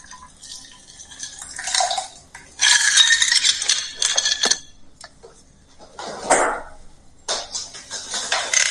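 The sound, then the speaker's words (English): A cocktail made with brown sugar and cinnamon vodka is poured into a glass in a few bursts of liquid splashing and trickling, with bright clinks of ice against the glass between pours; no one speaks. “Pour it in your glass.”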